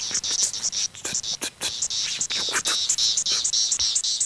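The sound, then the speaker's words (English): Periodical cicada Magicicada septendecula "bebop" call: a loud, high-pitched buzzing chorus that pulses in quick, uneven bursts, broken by sharp clicks, continuing steadily for several seconds with no voices. “So that's the bebop guy.”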